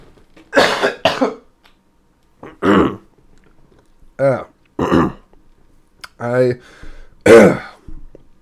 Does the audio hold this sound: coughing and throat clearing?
yes